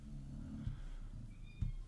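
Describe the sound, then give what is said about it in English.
A pet named Lila snoring softly in the background, a low, steady rumbling drone with a couple of faint bumps and a thin high whistle near the end; no one speaks. “Lila's always in the background snoring.”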